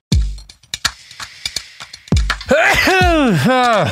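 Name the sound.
sneeze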